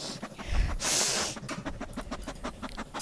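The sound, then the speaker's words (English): Rapid sniffing: a long breathy hiss is followed by a quick string of short, sharp sniffs through the nose, steady and rhythmic, with no talking. “Well, start sniffing, man.”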